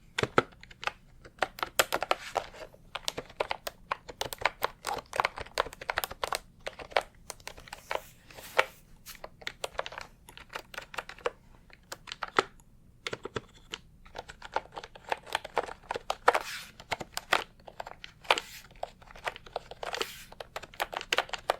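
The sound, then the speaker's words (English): Rapid, continuous typing on a mechanical keyboard, sharp clacky keystrokes in uneven bursts with brief pauses, moderately loud with no voices. “Keyboard typing. A mechanical keyboard.”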